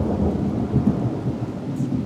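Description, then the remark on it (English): A low, steady rumble of thunder rolls on through a rainstorm, deep and sustained with no voices, rain hissing faintly over the top. “Just got interrupted by Mother Nature.”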